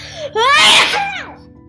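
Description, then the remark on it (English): A child's voice imitates a single loud sneeze: a short wind-up, then a strained, high, pitch-sliding burst that trails off into a breathy tail. “There were gumballs sneezing.”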